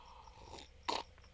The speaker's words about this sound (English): Ooh, super unprofessional with the slurp. And goddamn, I have to say that's pretty fucking good.